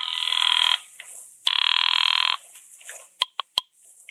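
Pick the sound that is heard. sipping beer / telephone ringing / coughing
telephone ringing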